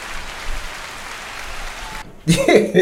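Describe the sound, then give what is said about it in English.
A steady wash of crowd applause sound effect plays for about two seconds, cuts off abruptly, and then a man starts talking. “So, everybody, give us a round of applause.”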